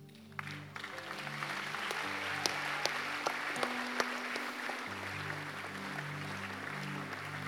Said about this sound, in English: You are not clapping well